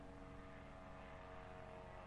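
An airplane flying overhead, its engine a steady, continuous droning hum with a tonal buzz, holding an even level throughout with no voices present.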